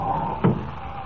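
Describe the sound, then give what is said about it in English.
A door opens with a single short wooden clunk over a faint steady hum. No one speaks. “Open that door”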